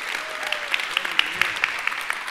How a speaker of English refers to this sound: Well, can we give the worship team a round of applause?